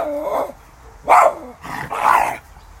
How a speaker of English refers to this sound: And there's my grumpy dog.